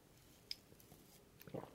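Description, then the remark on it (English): A quiet sip of a drink: a small click, then soft wet slurping and swallowing sounds near the end, with no talking. “I need to take a sip.”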